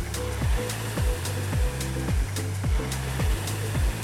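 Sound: rowing machine flywheel whirring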